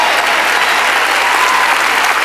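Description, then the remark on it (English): Steady audience applause, a dense wash of many hands clapping at an even, loud level for a couple of seconds, with no voices standing out. “Did y'all notice how the claps went down a little bit right there?”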